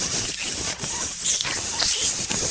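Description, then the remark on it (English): A milk frother, switched on with a flick-up button, vibrates in milk and hisses steadily, a bright airy rush with brief flickering dips and gurgles, fairly loud and continuous, with no voices over it. “And then it's on and vibrating all over the milk, and then the milk goes.”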